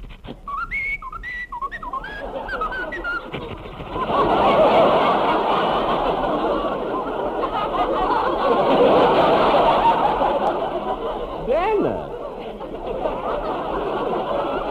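A few seconds of clear, melodic whistling of a tune, close and bright, before it gives way to a long, loud swell of crowd noise like laughter and applause.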